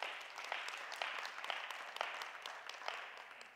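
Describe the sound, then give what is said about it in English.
An audience claps steadily, a dense patter of many hands with a few sharper individual claps standing out, fairly quiet and without any talking. “Yeah, you can clap, but you gotta help somebody.”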